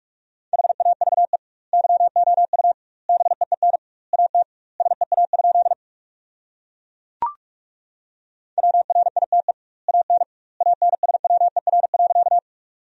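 Rapid Morse code beeps at 45 words per minute with double word spacing, sending sentences built from the 300 most common words. The beeps are a single steady mid-pitched tone in quick bursts of dots and dashes separated by short pauses, with one longer gap broken by a brief click.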